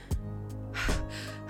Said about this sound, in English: A messenger runs up to the governor, panting.